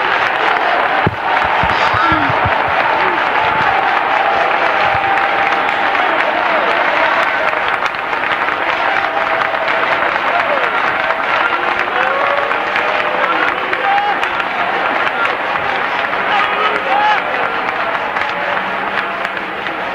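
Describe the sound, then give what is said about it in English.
A crowd claps their hands and shouts unto the Lord together for about twenty seconds, a loud, dense and continuous wash of hands and raised voices. “Clap your hands and shout unto the Lord.”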